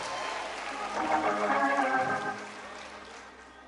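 A church audience, standing on its feet, gives the Lord a hand clap with steady, dense hand clapping, mixed with raised voices and cheering. It swells around the middle and then eases off slightly toward the end.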